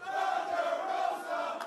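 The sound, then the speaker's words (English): A crowd chants the wrestler Thunder Rosa's name in unison, a loud, sustained roar of many voices holding a steady mid-pitched tone with slight swells, and no single speaker standing out. “Let's get a Thunder Rosa chant going.”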